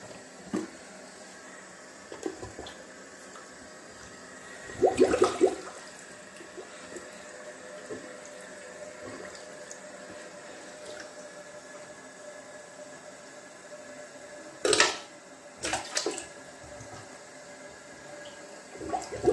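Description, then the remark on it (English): A stopped-up toilet flushes with a steady rushing of water that runs throughout, broken by a few sharp clunks and gurgles partway through and near the end. No one speaks. “And my toilet had to be stopped up at this time where I tried to flush it.”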